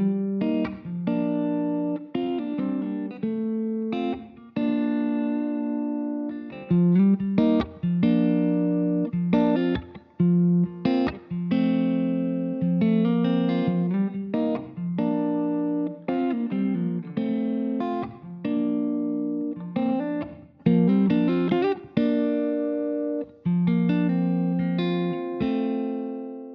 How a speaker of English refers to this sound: Second example, the guitar is close to me, it has more bottom and top. The room reverb has less bottom and top, longer pre-delay, and slightly more late reflections, slightly longer length.